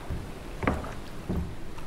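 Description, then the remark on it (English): Hollow knocks and scrapes as someone settles into a tiny metal fishing boat, two clunky bumps about half a second apart over a faint background rumble, with no talking. “Upon settling in a tiny metal fishing boat, the first favorable discovery was made.”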